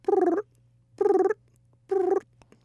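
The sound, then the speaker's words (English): A human voice imitates a young raccoon's call: three evenly spaced, purring, trilling bursts with a rough buzzy tone, each about a third of a second, separated by short silences over a low steady hum. “you've discovered that you know another vocalization from the raccoon, and really, we've got to hear it.”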